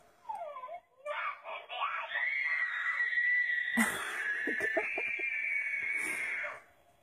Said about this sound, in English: They're having a fight in there over yelling. She was making dinosaur noises. He started yelling, and now she's yelling because he's yelling.